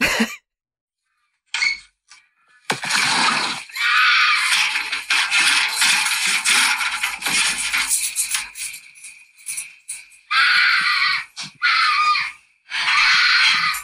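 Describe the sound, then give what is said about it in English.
A mountain lion screams at night, recorded as a phone voice memo: loud, harsh, raspy shrieks, one long drawn-out cry followed by shorter repeated bursts separated by brief silences, with no voices present. “It's a motherfucking mountain lion.”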